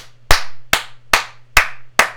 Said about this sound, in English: That's me clapping, everybody. Why? Why did you do that though? Because everyone's what clapping. It's the end of the podcast.